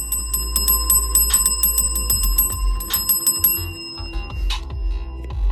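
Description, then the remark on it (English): A bell rings loudly in a rapid, continuous clatter of strikes with a lingering metallic tone. The strikes grow more scattered toward the end. No one speaks. “I think that's Taco the motherfucker's Bell's way of saying he looking for a female taco”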